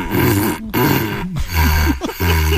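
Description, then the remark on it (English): A dog growls low, a loud, rumbling snarl that runs in a few long bursts separated by brief pauses, with no one talking over it. “It's not that damn dog in the paper towel holder, is it?”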